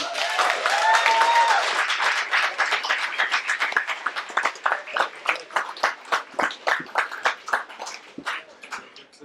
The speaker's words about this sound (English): Always get a big round of applause when you hear the truth.